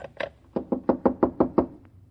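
Someone knocks on a door in a quick burst: two knocks, a brief pause, then six evenly spaced raps in a steady rhythm, solid and fairly loud with no voices.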